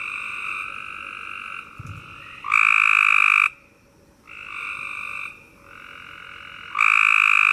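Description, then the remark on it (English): A chorus of Cope's gray tree frogs calls with loud, high-pitched buzzing trills of 34 to 69 pulses per second that overlap and swell in bursts, one call fading as another rises, with no voices present. “Their call is a high-pitched buzzing trill with 34 to 69 pulses per second.”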